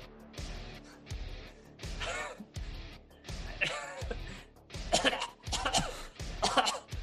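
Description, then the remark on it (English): A man's run of harsh, hacking coughs repeats in a steady rhythm for several seconds, fairly loud, with a few stronger bursts near the end and no talking. “He just coughs. He's just coughing.”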